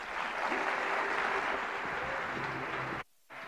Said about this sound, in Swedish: En stor applåd!